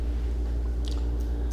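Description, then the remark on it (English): Light water splashing and swishing in short bursts as someone washes his hands, over a steady low hum. No voices are heard. “There's someone washing his hands.”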